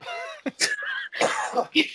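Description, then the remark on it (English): Several muffled coughs burst out in an uneven run, smothered by coughing into a towel, mixed with strained voiced sounds and a brief tonal, hum-like stretch. “Why are you just coughing into a towel?”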